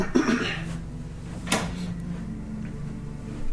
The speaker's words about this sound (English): Go and close that side door for me so that we can muffle their sound a little bit.